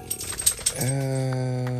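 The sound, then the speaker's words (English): A few quick, light clicks of typing on a computer keyboard, followed by a steady humming tone that takes over and holds to the end. “If this makes actually noise while I'm sitting here typing, that's going to be crazy. Hear me actually typing.”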